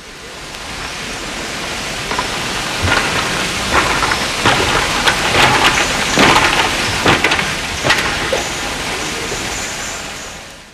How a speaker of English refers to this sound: Actually, Queen Elizabeth Park has numerous good acoustic design features, though perhaps not all were intentionally planned. For instance, there are some interesting walking surfaces, such as this bamboo bridge.